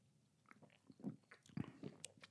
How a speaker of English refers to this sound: I hope you can hear us all drinking. That was some loud, loud gulping. I'm wearing the headphones, nice. And I can hear everybody's swallow.